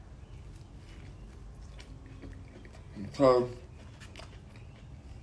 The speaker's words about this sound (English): even moments like that where I'm just biting a food, biting my burger, I'm chewing